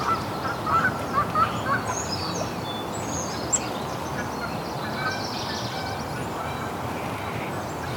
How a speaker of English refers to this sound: Here's some Canada geese. Yeah, in the background you can hear a lot of warblers and starlings.